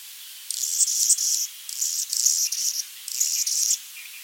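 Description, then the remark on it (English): A hummingbird chirps in three quick bursts of rapid, thin, high-pitched twittering, each about a second long with short pauses between, on its own. “This week's animal sound was a hummingbird, which is native to North and South America.”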